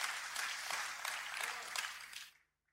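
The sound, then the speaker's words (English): A crowd applauds steadily, a dense wash of many hands clapping at once, then the clapping fades out abruptly into silence. “Why are people even clapping for her?”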